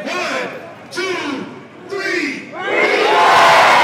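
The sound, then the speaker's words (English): A large crowd shouts in a few rising bursts, then breaks into loud, sustained cheering that swells and holds, filling the air with overlapping voices, as the crowd releases hundreds of blue and white balloons into the sky to mark a birthday. “The crowd releases blue and white balloons, hundreds of them, into the sky to mark Taylor's birthday.”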